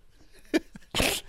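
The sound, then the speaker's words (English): A single loud sneeze: a quick sharp intake of breath, then a forceful, hissing burst that dies off after a moment. No one speaks. “God bless you.”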